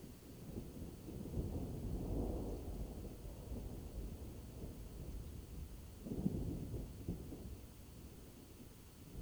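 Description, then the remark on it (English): Deep, rolling thunder rumbles through a steady storm backdrop, swelling around two seconds and again near six, with low booming waves fading slowly into a continuous murmur of rain. “The rolling sound of thunder.”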